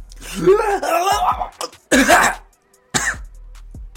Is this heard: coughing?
yes